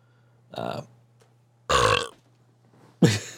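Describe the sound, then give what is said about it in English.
Three short burps forced on command, separated by pauses of about a second, the middle one loudest and the last cut off abruptly, over a faint steady low hum. “hey, gents, can you burp on command?”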